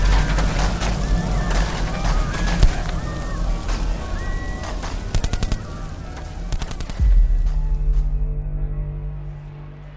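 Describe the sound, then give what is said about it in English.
Distant explosions rumble through a battle soundscape, mixed with rapid bursts of gunfire, and a heavier deep boom rolls out near the end before fading into a low drone. “There's a lot of explosions happening.”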